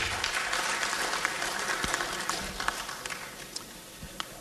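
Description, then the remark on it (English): An audience applauds steadily for Mr. Diadonten, who could not attend, dense overlapping claps forming a broad wash of sound that holds fairly even in loudness, with a few sharper individual claps popping out near the end. “Diadonten could not make it, but he also deserves a round of applause.”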